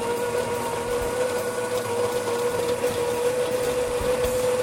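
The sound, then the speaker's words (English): A coffee grinder grinds fresh coffee beans, its motor holding a constant mid-pitched whine over a gritty, rattling crunch of beans, loud and unbroken from start to finish with no talking. “I mean, you know, I love opening a bag and smelling fresh coffee beans, and I love grinding them to perfection.”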